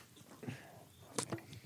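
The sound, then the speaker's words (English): Someone takes a quiet sip from a can of White Claw hard seltzer, with a soft wet slurp and a couple of brief mouth clicks. Nobody speaks. “just by the end of it, sip of that White Claw. Yeah, let's do that real quick.”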